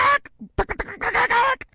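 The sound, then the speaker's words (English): A person imitates a chicken from a noise complaint with a quick series of loud, nasal squawks and clucks, ending in a brief pause and a faint final sound. “The call that I got, the chicken started like sounded like a.”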